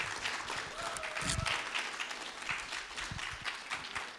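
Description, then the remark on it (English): An audience breaks into sustained applause for a woman, a dense wash of many hands clapping at steady volume for about four seconds, with a few whoops or voices mixed faintly underneath. “Should we give her a big round of applause?”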